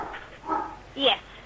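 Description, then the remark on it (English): A dog barks twice in quick succession, short sharp yaps about half a second apart, the second a bit louder, with some faint murmuring voice sounds around them. “Oh, there's that damn dog again.”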